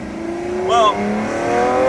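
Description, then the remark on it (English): A 6.5-liter V12 engine revs hard to the redline, its pitch climbing sharply in a brief surge before settling into a steady, loud drone that keeps rising slightly toward the end. “Oh, red light in a 6.5-liter V12.”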